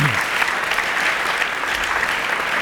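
An audience breaks into steady applause for two musician guests before they are introduced, a dense wash of many hands clapping at once, holding at an even, fairly loud level throughout with no voices standing out.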